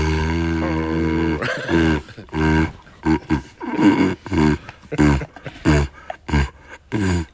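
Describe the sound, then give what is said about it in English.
A big dog vocalizes through a kitchen roll cardboard tube held in its mouth, starting with a long droning hoot, then a run of short, rhythmic tooting growls, loud with no talking. “It's basically a big dog. With the tube from a roll of kitchen roll in its mouth, but it starts to create music.”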